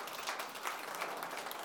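An audience applauds with a dense, steady wash of many hands clapping, sustained evenly throughout at a moderate, slightly distant level, with no voices standing out.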